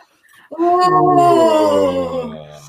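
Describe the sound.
A long, loud voiced yawn, made while imagining being a cat waking in sunshine, slides slowly downward in pitch over about two seconds, starting abruptly after a short quiet breath and tapering off at the end, with no talking.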